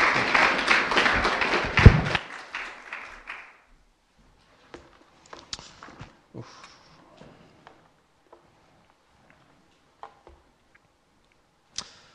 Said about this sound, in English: It's great to have him back. Can we just give him a warm welcome of applause just to welcome him back?